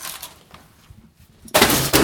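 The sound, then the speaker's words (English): A laptop is tossed into a bin, landing with a sudden loud crashing clatter after a stretch of quiet shuffling, followed by a second quick impact as it settles. “Right, if you just open the bin doors, we'll go and chuck this in.”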